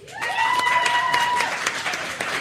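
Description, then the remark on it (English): A crowd applauds as a vote, in a dense, steady patter of claps, with a rising, high whoop or whistle held over the first half before the clapping carries on alone. “Applause if you would rather have the date told to you right before you go to sleep.”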